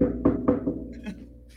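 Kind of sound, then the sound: impact, knocking on a door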